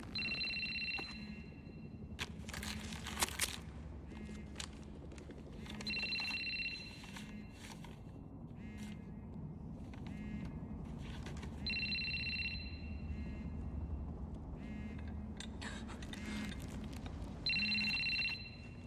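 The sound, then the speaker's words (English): A telephone rings repeatedly in regular bursts, its bright warbling tone repeating about four times over a low rumbling background with scattered clatter, clear. The phone rings for Batman, who answers it, and the call is a FaceTime with the Riddler. “And the phone's ringing, he answers the phone, and then it's a FaceTime with Riddler, and Riddler is basically saying, he's like, let's play a game.”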